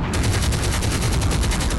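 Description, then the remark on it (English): Rapid automatic gunfire rattles nonstop, a dense stream of sharp, loud bursts repeating quickly with a heavy low-end thump, with no voices over it. “Choppers!”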